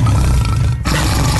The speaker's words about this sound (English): So that's the tiger roaring.